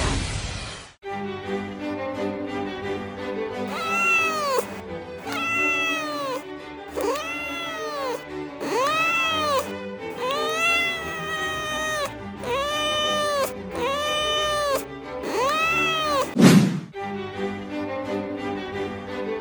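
Tibs the cat meows over and over, around nine drawn-out, pitched cries with a rising-then-falling shape, coming in a steady rhythm roughly every second or so, with no talking.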